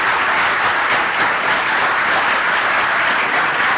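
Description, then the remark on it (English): Sustained applause from a large audience for two contestants, a dense, steady roar of many hands clapping at once, loud and continuous throughout with no voices standing out. “A round of applause, I think, is due again for our two fine contestants.”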